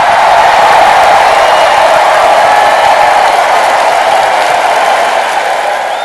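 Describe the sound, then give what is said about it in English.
A dense, steady round of applause from a crowd after a sung song, loud and continuous throughout with no voices standing out, tapering only slightly toward the end. “Yeah, and that was a round of applause.”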